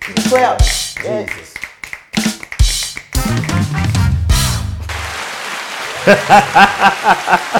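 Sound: clapping applause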